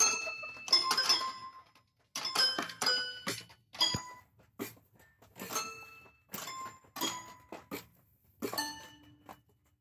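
A chicken pecking at piano keys while another chicken pecks at drums: random, unmelodic piano notes struck one or a few at a time in uneven bursts, mixed with sharp drum and cymbal-like hits, plinking and clattering with no steady rhythm, and no talking.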